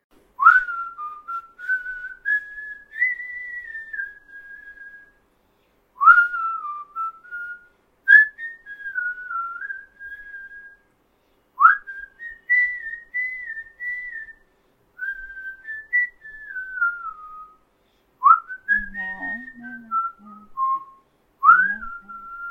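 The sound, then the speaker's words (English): A person whistles a slow tune, clear, in several gliding phrases separated by short pauses. There is no talking, just a faint low rustle near the end. “I'll whistle it.”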